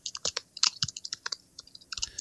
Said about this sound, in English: I hear typing. It wasn't me.